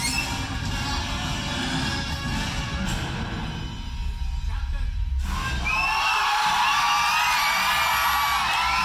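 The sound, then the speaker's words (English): A packed movie theater audience at a screening of Endgame erupts in loud, sustained cheering, with whoops and yells layered over a dense crowd roar. Halfway through there's a brief dip, then higher-pitched shrieks and whistling whoops swell again. “Okay, so our reason I showed you these things is because there's a wide variety of people reacting in certain situations.”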